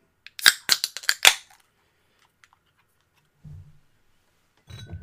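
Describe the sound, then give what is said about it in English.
A 12-ounce beer can is cracked open with a quick burst of sharp metallic clicks and snaps. Near silence follows, broken by a couple of faint low thuds or rustles. “So, 12-ounce can, without further ado.”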